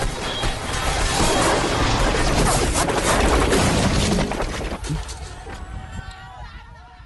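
A helicopter crash from the film Black Hawk Down: roaring, chaotic crashing and rumbling for about four seconds, then a sudden drop into a quieter tail of settling debris and faint ringing tones.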